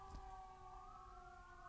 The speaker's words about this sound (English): Sirens. There were some sirens like 5 minutes before I started recording, so I didn't expect to hear them again this soon.